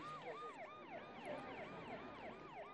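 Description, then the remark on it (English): An emergency vehicle siren wails in a fast, repeating up-and-down yelp, steady, with no voices over it, as emergency services attend a road accident where a lorry carrying beer bottles shed its load. “The emergency services are here to deal with the human casualties.”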